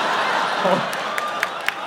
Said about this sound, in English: The applause.